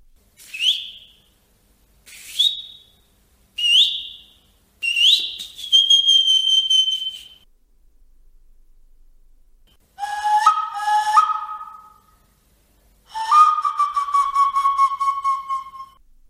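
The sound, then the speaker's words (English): A soapstone karanga weka whistle plays four short, shrill rising blasts, then a longer held note, followed by lower, breathy, warbling tones that mimic a bird's call. No one speaks. “However, there is one karanga weka made of soapstone that is held by the British Museum, the only example of its kind.”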